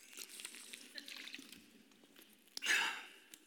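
Someone drinks, with soft wet mouth clicks and small sips, then a louder breathy swallow and exhale near the end. Quiet overall, with no talking.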